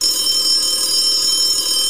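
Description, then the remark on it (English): A telephone rings during the call-in show Saturday Night Knapsack, a loud, shrill electronic tone that holds steady for the full two seconds, with no one talking. “Let's go ahead and answer that phone.”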